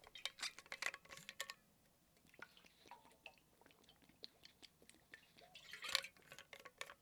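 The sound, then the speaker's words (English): Someone quietly drinks water during a quick break: soft sips, gulps and wet mouth sounds, with a few light clinks and taps from the glass or bottle, and no one speaking. “quick water break.”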